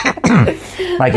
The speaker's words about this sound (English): No, I was trying to clear my throat